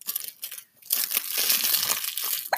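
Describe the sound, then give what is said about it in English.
A crinkly plush giraffe baby toy being squeezed and crunched, with bursts of bright, papery crackling, a brief lull, then a longer continuous crinkle before a final sharp crunch. “You like your giraffe? You like a giraffe? Your crunchy one?”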